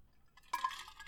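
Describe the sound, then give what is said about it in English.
A short burst of ice cubes rattling and clinking against the inside of a coffee mug, with a bright, glassy jingle and a faint liquid slosh, with no talking. “Wow, I had a good rattle, I'll say. The ice cubes in your coffee mug there.”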